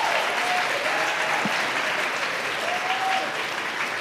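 Steady, sustained applause from an audience, a dense even wash of clapping filling the whole moment, with a couple of faint whistle-like tones rising above it and no clear talking.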